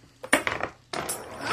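Three dice clatter across a hard tabletop, a few sharp clicks followed by a longer tumbling rattle, moderately quiet with no voices.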